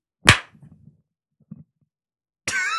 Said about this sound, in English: Okay, so well, we should do it at the same time. Clap? Yeah. Okay. One, two, three.